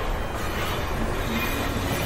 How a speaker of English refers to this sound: Hey, where's the train going? Wait, can we stay on?